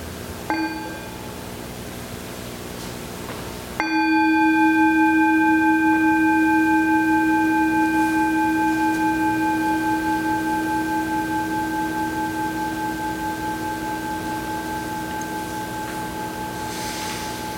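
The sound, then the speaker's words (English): A singing bell is struck twice at the start of a worship service, the second strike louder, and its bright layered tones ring on with a long, slowly fading shimmer. “And I'm going to use the singing bell as a beginning. So we'll just listen to the sound of the bell, and then I'll read the prayer, and then we'll move to the call to worship.”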